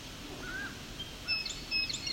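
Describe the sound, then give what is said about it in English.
A common yellowthroat sings faintly, a few short, high, thin notes scattered over a soft outdoor background hum, with no one talking. “He's not singing though yet, but you do hear another one singing and another one.”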